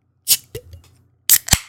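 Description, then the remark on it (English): Two beers, one in a can and one in a bottle, crack open with sharp pops and hissing bursts, one pair of snaps, a short pause, then another crisp pair. No voices are heard. “So, let's crack these and pour them.”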